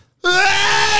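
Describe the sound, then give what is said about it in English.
A man's voice imitates his uncle's huge sneeze, bursting in suddenly after a moment of silence and stretching into one loud, strained, drawn-out wail that holds steady without tapering off. “My uncle used to have the loudest fucking sneeze ever. It really was like, I mean, that one I'm doing, that's his sneeze.”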